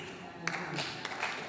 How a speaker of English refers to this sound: Yes, thank you. I like the applause.